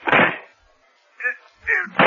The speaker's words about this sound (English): This door is locked from the other side, Faraday, so we can break it down.